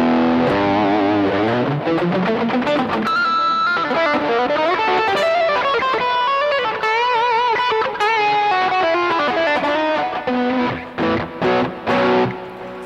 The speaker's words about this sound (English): Almost too much distortion for this guitar